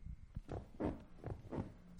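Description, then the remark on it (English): A couch cushion being squished, letting out a quick series of about four low, groaning, rubbery squeaks that sound somewhat fart-like and fairly loud. “That was the couch cushion squish.”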